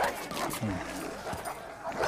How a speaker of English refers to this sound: Nah. He just ain't used to seeing a man ripped apart by dogs is all.